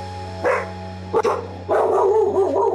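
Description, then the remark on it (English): A dog barks twice in sharp, separate yaps, then breaks into a longer stretch of continuous barking and whining over a steady low electrical hum. “It's my dog.”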